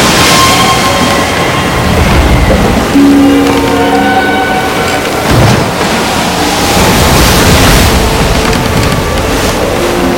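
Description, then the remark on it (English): A strong wind roars over a lake at night, stirring up churning water, waves surging and crashing in a loud, steady wash with deep rumbling swells and faint creaking tones. No voices are heard. “By then a strong wind was blowing and stirring up the water.”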